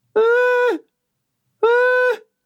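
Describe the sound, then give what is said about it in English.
A person imitates a goat with two loud, drawn-out bleats directly in someone's face, each lasting over half a second, separated by a short pause, with no other talking. “I'm just basically doing goat voices in his face.”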